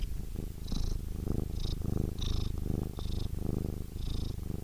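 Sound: cat purring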